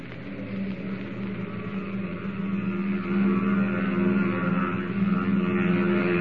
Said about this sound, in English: As the giant steel bird pierces the curtain of night and roars upward on its test flight